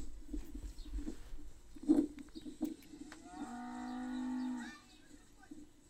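In a video, a cow being attacked by a goat lets out one long, loud, drawn-out moo that swells and then stops abruptly, preceded by a few scattered thuds and background rustling.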